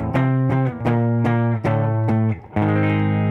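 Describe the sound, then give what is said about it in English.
A loud, heavily distorted electric guitar plays a melodic line of sustained, buzzing notes with sharp picked attacks roughly every half second, shifting pitch as it goes, with no voices. “The guitar melody comes in.”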